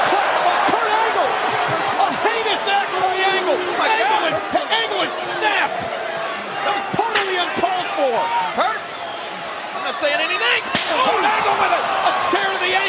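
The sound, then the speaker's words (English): In a pro wrestling match, Kurt Angle slams a steel chair against Kane's ankle in a few sharp, loud metallic impacts, spaced irregularly over a roaring crowd and excited voices talking throughout. “Again, that steel chair to the ankle of Kane.”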